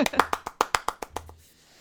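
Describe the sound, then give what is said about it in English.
A quick burst of hand clapping, about ten sharp, evenly spaced claps in a brisk rhythm that soften toward the end and then stop, leaving a faint hum. “I don't know why you're applauding that.”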